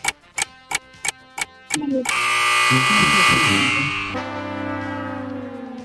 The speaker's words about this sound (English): Shot clock went off, bro.